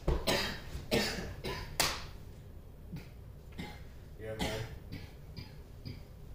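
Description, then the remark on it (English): Several harsh coughs burst out, spread irregularly across a few seconds, with some murmured voices and rustling in between. “Oh, you said you weren't coughing.”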